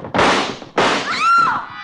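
Two loud gunshots about half a second apart, fired in a dark room, each a sharp blast with a long rumbling tail. A woman is hit, and her high, wavering scream rises over the second one before everything fades.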